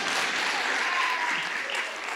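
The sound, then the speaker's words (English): A church audience applauds for Bishop Johnson, a dense, steady wash of many hands clapping at an even loudness throughout, with faint voices mixed in beneath the clapping. “If you agree with me, please clap it for Bishop Johnson.”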